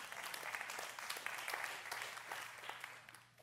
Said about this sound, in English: Amen. Yeah, clap. Let's go.